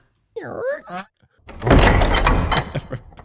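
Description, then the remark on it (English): A brief rising, voice-like sweep gives way to a door sliding shut: a loud, rumbling close that rattles on for over a second before fading, alone. “All right, guys, the doors to the House of Mario are closed.”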